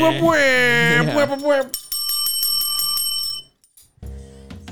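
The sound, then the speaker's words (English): An alarm goes off: a rapid, repeating, high-pitched electronic ringing that lasts about two seconds, following a loud voice and then cutting out. “That's a poop alarm there.”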